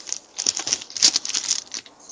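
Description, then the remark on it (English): A quick flurry of small hard clicks and clatters as dice are rolled across a table for a ranged attack in a game, moderately loud, lasting about two seconds with no voices. “So roll my shooting.”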